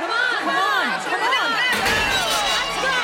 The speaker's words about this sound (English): Oh, what's the shouting for? The other half of the city is rising up.